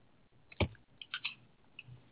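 A few quick keystrokes on a computer keyboard tap out irregularly, fairly clear, with one sharper thump followed by a short cluster of lighter clicks against a quiet background.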